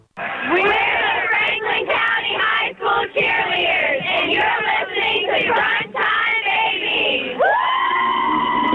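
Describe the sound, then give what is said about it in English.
A group of cheerleaders cheers and shouts together at a game in loud, continuous bursts, with rising whoops and chant-like calls filling nearly nine seconds, swelling again at the end. “Oh, I love to hear the cheerleaders.”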